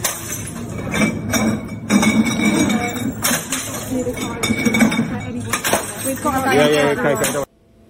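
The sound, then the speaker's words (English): A woman throws glass bottles that clink and smash repeatedly, sharp bright crashes scattered over several seconds amid a busy, noisy scene with voices in the background, cutting off abruptly at the end. “She's throwing bottles.”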